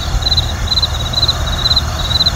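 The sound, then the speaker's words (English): Crickets chirp in a steady, repeating rhythm, five short trilled bursts spaced evenly, fairly clear over a low, constant background rumble with no voices. “But you can hear the crickets too, or is that me?”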